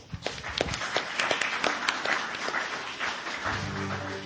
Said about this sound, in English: Let's give him a clap.